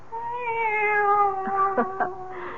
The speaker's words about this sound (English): It's the cat. She's back.